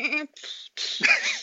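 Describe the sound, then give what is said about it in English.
A voice tries to imitate machine gun fire with three harsh, breathy vocal bursts separated by short pauses, but the wavering, quavering pitch makes it sound more like a goat bleating. “I was trying to do machine gun fire, but it became a goat.”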